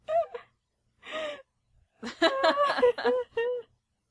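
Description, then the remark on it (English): A person imitates a duck, giving a couple of short, nasal quacks followed by a quicker run of quacking sounds, fairly loud, with no other voices. “Go quack.”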